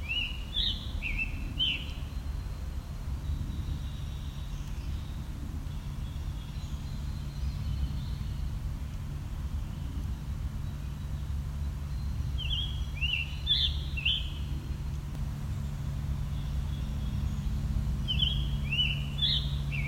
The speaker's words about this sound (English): So think of how a robin sounds, then give it a sore throat. That's what this sounds like.